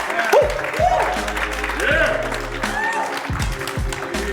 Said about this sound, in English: Come on now, clap it up. Clap it up. Yes, you're in the second row. Clap, let's go.